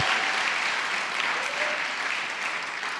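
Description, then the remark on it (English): An audience cheers and claps together, a dense, steady wash of crowd noise that holds at an even level for a few seconds with no one speaking over it. “Well, just give a little cheer because then they just need to come back.”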